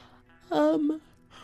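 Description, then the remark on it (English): A single voiced yawn from an extremely tired person lasts about half a second. Its pitch slides downward and trails off before quiet room tone returns, with no other talking around it. “Sorry, I had to yawn.”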